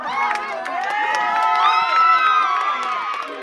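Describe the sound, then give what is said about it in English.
A crowd of employees bursts into loud, sustained cheering as a court decision cancelling a sale is announced over the phone by their lawyer, many overlapping voices shouting and whooping at once in high, excited pitches, with no break for the full few seconds. “And they announced it, and the lawyer, they were on the phone with a lawyer, and it just erupted. Everyone erupted.”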